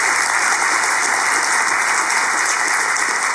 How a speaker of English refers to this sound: Okay, give them a round of applause as they come up.